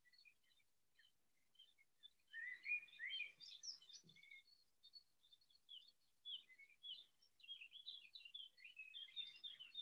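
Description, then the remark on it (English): Several birds chirp and sing continuously outdoors, a busy overlapping chorus of high, quick tweets and trills, with no voices. “Bird life.”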